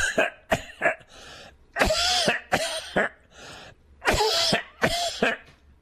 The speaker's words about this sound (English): And then what do? You cough it out.